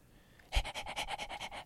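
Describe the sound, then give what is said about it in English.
A voice imitates the panting of Ralph, a hunting dog in a story, a quick steady series of about ten breathy huffs, fairly loud, with no other talking. “panted Ralph.”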